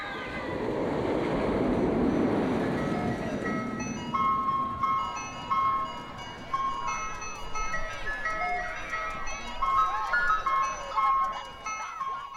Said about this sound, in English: The tinkling tines of the resident ice cream truck pierce their way through the murmuring crowd, competing with the screams of adrenaline-fueled adolescents for sonic space.